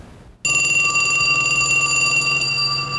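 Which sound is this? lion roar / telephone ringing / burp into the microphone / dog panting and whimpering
telephone ringing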